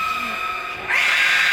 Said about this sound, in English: Some people likened it to the sound of a musical instrument, a cello, when it was content. But when it was angry, it would scream and screech.